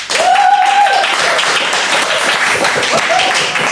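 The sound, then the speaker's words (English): A live audience bursts into steady, dense applause to vote for the brain bath option. The applause holds at full volume throughout, with a couple of short whistles cutting through near the start and again toward the end. “Whereas if you wanted to have an eternal brain bath, please applaud now.”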